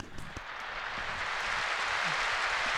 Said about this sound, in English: You hear a smattering of applause from the camp. Which is very good, very good, yes.